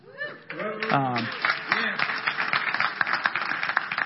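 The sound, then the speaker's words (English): An audience applauds a speaker's 24th wedding anniversary with dense, crackling clapping, while a few voices whoop and cheer over the first second before the clapping carries on alone at an even level. “And you can, most of that applause, 99.9% of that applause is due to Jody.”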